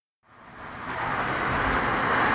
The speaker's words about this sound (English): back in the car again, heading back to Superior.